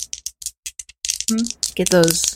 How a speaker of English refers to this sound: And how many do I roll? Two dice. 2d6.